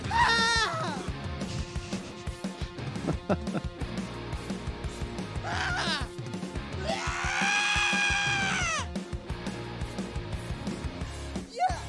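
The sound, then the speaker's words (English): An experimental song layered with distorted yelling and crying voices, including a long, strained high wail in the middle, over dense, busy instrumentation that stays loud throughout. “This is a bunch of experimental sounds of yelling and crying in the background of the song.”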